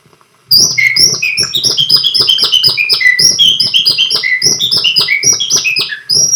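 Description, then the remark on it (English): A man whistles an imitation of birdsong: rapid, high chirping notes and warbling trills that tumble over each other in a loud, continuous stream for about six seconds, with no talking. “I want you to follow my whistling.”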